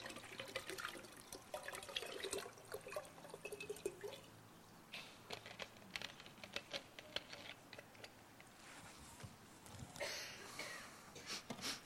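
Liquid pours and sloshes around a container, with splashy, trickling sounds and scattered drips and clinks, fairly quiet, no voices.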